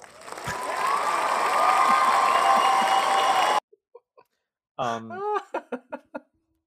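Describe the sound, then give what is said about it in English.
Audience applause, a steady roar of clapping with some cheering, runs for about three and a half seconds and then cuts off abruptly, followed by a few faint taps and a voice speaking. “Applause.”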